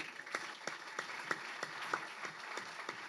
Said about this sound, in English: Like, those guys, stand up, you guys. I love you guys. You always come to my books. Let's clap it up for these guys.